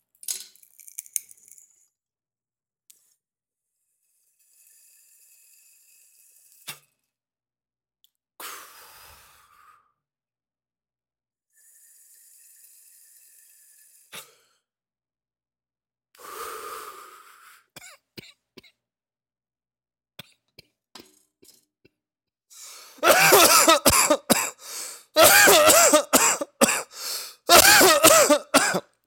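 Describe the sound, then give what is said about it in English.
Quiet bubbling and faint hisses from a bong hit build slowly, then erupt into a long fit of loud, harsh, repeated coughing, with throat clearing and gasping breaths between bursts. “You ever gonna hit that bong?”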